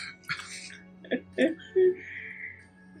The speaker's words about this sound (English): I like cough. I cough awkwardly. I'm just totally not getting what's happening.